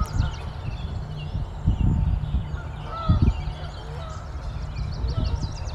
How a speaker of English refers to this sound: So you can hear some American robins, yellow warblers, just a couple Canada geese going overhead.